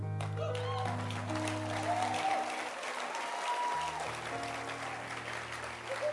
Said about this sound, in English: He's a very big blessing to us, and what, clap your hands for him.